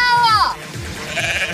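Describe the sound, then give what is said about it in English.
A single short sheep bleat, loud with a wavering, quavering tone, fading after half a second into faint background noise. “The sheep lives, so you have to take the yin with the yang.”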